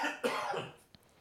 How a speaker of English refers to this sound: On the last podcast, you'll know that I had the coldy thing, and of course, I'm left with this stupid cough.